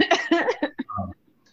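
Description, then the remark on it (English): A loud fit of coughing: several harsh bursts in quick succession that weaken toward the end, followed by near silence. “So we're gonna wrap here because I'm about to have a coughing attack and I don't have don't die.”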